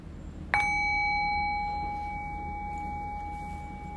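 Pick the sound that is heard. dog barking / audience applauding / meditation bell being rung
meditation bell being rung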